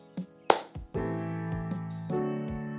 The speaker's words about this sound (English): All right, clap sync. Ready?